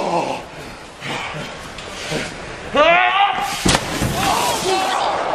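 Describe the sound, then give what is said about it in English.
Wrestler Raven is thrown through a window with a sharp, loud crash midway through, amid a roaring crowd and shouting voices that keep going after the impact. “He just threw Raven right through that window.”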